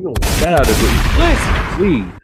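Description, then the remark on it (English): Loud gunshot blasts crack out in quick bursts over a dense rumbling background, mixed with voiced shouting, and the whole thing cuts off abruptly after about two seconds. “Gunshots.”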